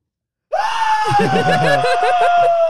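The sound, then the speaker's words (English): A voice lets out an imitated bloodcurdling scream, one long, loud, sustained high shriek that starts abruptly and holds steady, with laughter and chatter bubbling underneath. “Like the most visceral, like bloody murder ass scream I've ever heard”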